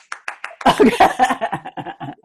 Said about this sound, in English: I'm applauding you, so keep that on the tape.